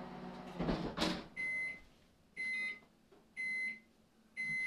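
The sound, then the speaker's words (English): A microwave oven in a kitchen beeps four times in a slow, even rhythm, each tone clear and sustained, signalling food, following a brief clatter of a door or cupboard at the start. “That beeping means food.”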